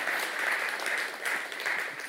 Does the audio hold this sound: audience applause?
yes